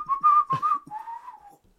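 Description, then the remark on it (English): A person whistles a short melody from a pop song, a clear, steady tone that bends between a few notes before trailing off after about a second and a half. “That's my girl, but I didn't even recognize what you're whistling.”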